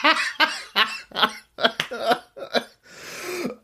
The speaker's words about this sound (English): Oh my God, there's the COVID cough. I'll tell you what, that's the only thing I've got left lingering, but you know, I was very lucky, so touch wood.